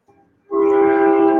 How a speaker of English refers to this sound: I have a train coming by. if it gets loud, there's just a train, man. Industrial shit going on here.